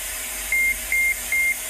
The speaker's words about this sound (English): I'll turn up my volume on my computer so you can hear it. But that basically this is supposed to terminate the nanobots that are both sprayed into the atmosphere and in vaccines. It's literally just white noise and beeping.